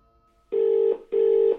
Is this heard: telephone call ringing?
yes